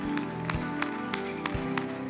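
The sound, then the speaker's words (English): An audience claps together in a steady rhythm, about three sharp claps per second, over sustained music. “Come on, you can clap.”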